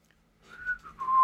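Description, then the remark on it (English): A short human whistle, a sustained mid-pitched tone that wavers slightly before settling into a steady note and growing louder, heard alone without any talking. “I heard the whistle and it's like, okay, I'm done.”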